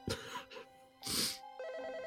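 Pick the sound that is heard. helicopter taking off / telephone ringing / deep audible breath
telephone ringing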